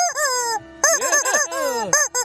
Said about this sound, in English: Chicken is back, or I'm back. Chicken's here. Chicken stays here all the time in the passenger door.